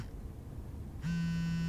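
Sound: mobile phone buzzing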